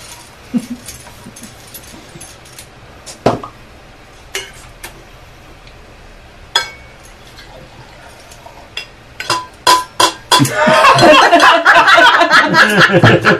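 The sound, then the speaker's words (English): Scattered soft clicks and taps give way to a steady, bubbly rush of wine being poured, loud and continuous for the last few seconds, with no talking. “Some classy wine pouring right there.”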